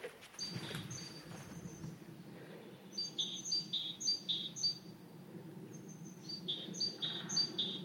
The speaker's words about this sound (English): It's a great tit and a great spotted woodpecker.